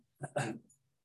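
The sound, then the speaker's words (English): A dog gives a brief whimpering cry, wanting to be let out: one short strained vocal burst rising and fading within a second, moderately loud, followed by quiet. “I have to go let the dog out.”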